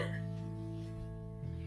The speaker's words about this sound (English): You burped like a man.